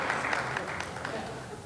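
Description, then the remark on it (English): An audience claps steadily, a dense crackle of many hands that holds at an even, moderately loud level throughout, with no one speaking over it. “I don't know why you're not applauding.”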